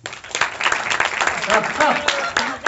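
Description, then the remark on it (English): At a Wisecrackers show, a crowd claps in a dense, steady burst of applause lasting a few seconds to show who is there for the first time, with scattered voices and a brief whoop or two rising through the clatter. “So by round of applause, how many people are with us for the first time tonight?”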